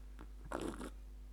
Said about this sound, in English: Oh, that was a big slurp of a cappuccino. Gross. That was slurpier than I expected. But actually, I need another slurp because it was so good.